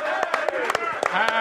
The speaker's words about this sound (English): Let's give him a roaring round of applause right there, everybody.